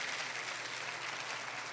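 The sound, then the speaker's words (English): An audience applauds for Jesus with a steady, dense wash of clapping that continues evenly throughout, without any voices over it. “Go ahead and give Jesus a strong round of applause.”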